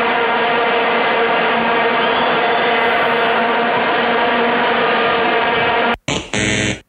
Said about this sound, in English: Wow. That was bees, dude. That wasn't Vuvuzela. That was bees. What the fuck was that? I don't know. Our soundboard sucks, too.